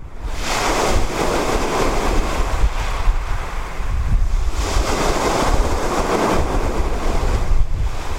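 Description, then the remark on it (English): Sea waves wash onto a shore in steady surges, a broad roaring hiss that swells and recedes every few seconds, with wind buffeting the microphone and no voices. “And this was because last week I went to the sea.”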